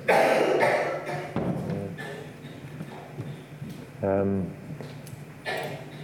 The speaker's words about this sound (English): The poor lady's got a bad cough.